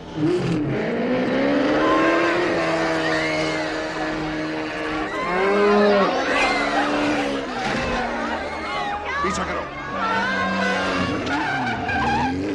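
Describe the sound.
A car speeds along during a chase in Udaipur with tires squealing and the engine whining through rising and falling pitches, loud for the whole stretch, with indistinct voices mixed in.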